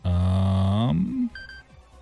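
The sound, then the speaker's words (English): A loud, buzzy electronic tone from a cheap phone holds steady for about a second, then bends upward and cuts off, followed by a brief, faint higher-pitched beep, like a cheap toy phone. “What is yours, a Fisher-Price phone?”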